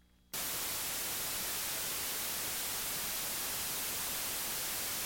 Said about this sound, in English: If white noise were a baseball game, it would be every possible play at every position, at every given moment.